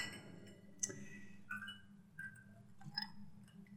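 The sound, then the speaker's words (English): Several light clinks of glasses during a toast with rye whiskey ring out at uneven intervals, each with a brief bright ringing tail, quiet against a low background hum, with no talking. “As I pour myself a little bit of this rye whiskey, you know, we're having an in-depth fancy conversation, calls for a fancy beverage.”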